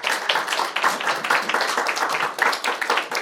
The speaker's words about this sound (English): Can we give the Lord a clap of hands?